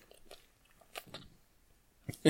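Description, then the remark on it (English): Wet slurping from the mouth of Jazz, a pet whose head is lying on a computer: a few short, smacking bursts spaced irregularly, quiet at first and then two louder smacks at the very end, with no talking. “That slurping you just heard was Jazz.”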